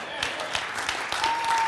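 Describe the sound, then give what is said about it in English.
A crowd claps together in agreement in a dense, steady burst of applause, many overlapping hand claps forming a bright, crackling wash with a faint sustained tone near the end. “There, that's what you just clap and start agreeing with it until it becomes reality in you.”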